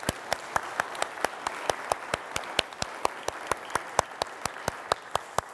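Applause with sharp, evenly spaced claps at roughly four per second, standing out over a steady hiss of softer clapping, with no voices.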